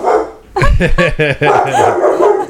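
A dog barks excitedly at a neighbor who stopped by, a rapid run of loud barks that spills into continued yapping and yelping, with a noisy background.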